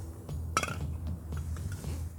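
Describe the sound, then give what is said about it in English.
A glass beer bottle is set down on a table with one sharp, bright clink, followed by a few faint soft knocks over a steady low hum. “Put this down for right now, I hope you don't mind.”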